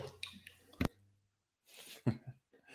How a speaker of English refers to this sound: Excuse me, guys. I'm gonna grab a drink of water.